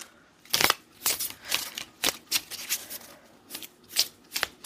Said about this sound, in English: Yeah, so I'm going to grab my Spirits and Shadows Oracle deck, and I will get to shuffling. I'm going to shuffle 3 times.